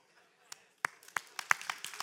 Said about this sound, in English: That's a weak hand clap. Come on, come on.